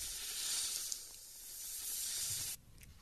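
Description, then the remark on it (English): A steady, loud snake hiss of airy noise holds for about two and a half seconds, then cuts off abruptly, leaving a faint tail. No one speaks. “All right, let's snake it, Ricky.”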